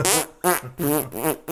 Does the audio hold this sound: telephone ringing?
no